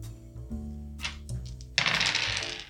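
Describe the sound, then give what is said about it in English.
Dice clatter on a hard table: a few light clicks, then a loud burst of rattling and tumbling that fades out within a second, over soft background music. “My dice are betraying me.”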